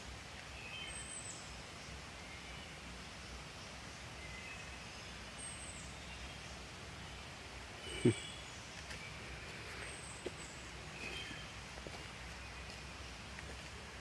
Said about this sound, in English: I'm glad I did it, and I hope whoever listens to this, I know I will enjoy the birds and the creek.